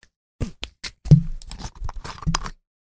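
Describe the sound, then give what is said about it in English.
A plastic water bottle cap twisted open, its seal breaking in a quick run of sharp clicks and crackles over about two seconds, with no voices. “That little click sound? Yeah, that was a fun sound. It was. That is the seal actually breaking off the top.”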